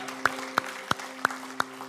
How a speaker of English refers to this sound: Has Jesus done some things in your life? Yeah, come on, clap your hands, shout, praise, do what you got to do.